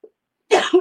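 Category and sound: human body sound, cough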